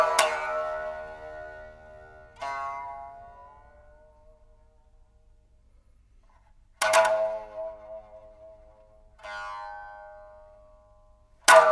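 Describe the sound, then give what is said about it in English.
A biwa, the Japanese lute, is played solo with a huge, wide plectrum used to pluck and hammer the strings: four sharp, percussive plucked strikes, each a bright buzzing attack that rings out and slowly decays, separated by long pauses. “So this is what a biwa sounds like.”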